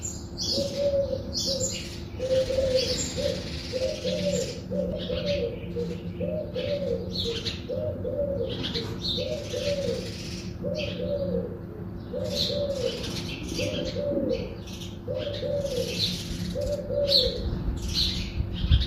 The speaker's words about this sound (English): On the sounds of travel, when we were in Marrakesh, I woke up early just to record the birds in the courtyard of our hotel. It was just wonderful.